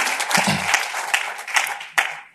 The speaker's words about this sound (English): That's right. Clap it up for Chicago, everybody.